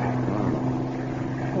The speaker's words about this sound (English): I don't like this engine